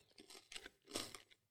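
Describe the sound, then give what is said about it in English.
Crisp, crackly crunches of someone biting into Pappy & Company Barrel Aged Nib Brittle, a few bursts with one loudest snap midway, followed by softer chewing crackles, no talking. “We're going to do a bite of that and a sip of the Pappy, and it should taste nothing like.”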